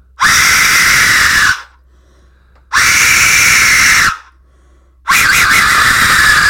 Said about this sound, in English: There we go. Yeah. Death whistle. So that was also to note, away from the microphone. Yeah, like not facing it.